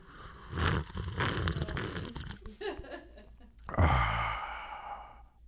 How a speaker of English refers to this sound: ASMR coffee sipping.